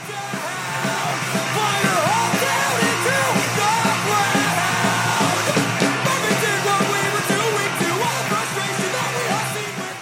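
A loud, dense punk song celebrating Marvin Heemeyer, with raw shouted vocals over distorted guitars and pounding drums, the yelled lyrics hard to make out as the noisy wall of sound stays steady throughout.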